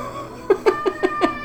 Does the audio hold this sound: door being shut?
no